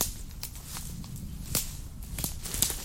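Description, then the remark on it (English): Footsteps walking off-path through old woodland, passing a large fallen beech completely covered in moss: about six uneven crunching steps through dry leaf litter and twigs, with faint crackles between them and no talking. “Shall we go off the path? Yeah, let's do that. I'm just passing a large beech that has fallen and is completely covered in moss.”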